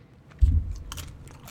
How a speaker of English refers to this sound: Another little bite of chicken. That's good.